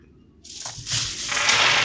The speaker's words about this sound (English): Wow. That is a lot. That's what a pound of dice smells like.